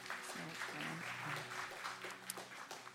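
crowd, audience applause

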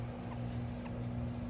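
bird, pet birds calling

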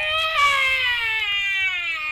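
sound effect, dragon roar

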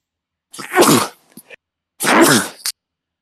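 human body sound, three sneezes

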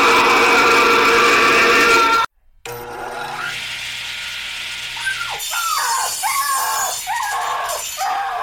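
animal, puppy yelping and whimpering

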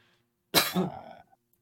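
human body sound, coughing

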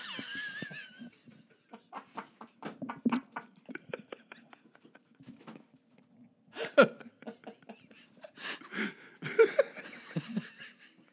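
human body sound, hiccups

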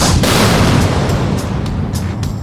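sound effect, cannon fire

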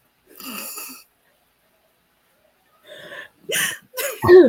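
human body sound, stifled sneeze attempt

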